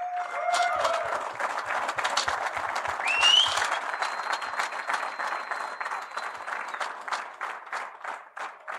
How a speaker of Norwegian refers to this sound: Først så skal vi si tusen takk alle som her, til Viltgården og til Norwegian Outfitters, som har laget en fantastisk dag for oss alle sammen. Stor applaus til dem!